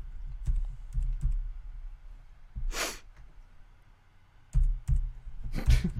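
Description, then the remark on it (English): Computer keyboard typing as someone types a number in: scattered, irregular key clicks in short bursts, with two louder breathy rushes of noise breaking in between. No one speaks. “I was typing the number in.”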